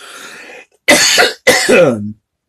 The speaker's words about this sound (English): Oh, mercy. Got that cough going on because of that insulation, friends. That is some stuff.